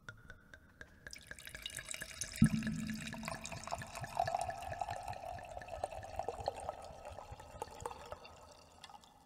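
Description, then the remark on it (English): Wine pours into a glass with reverb, a steady gurgling splash that starts with a sharp splash and rises in pitch as the glass fills, lasting several seconds with no talking. “Reverb wine pours.”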